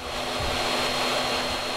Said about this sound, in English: Sawing and sanding continue throughout the afternoon.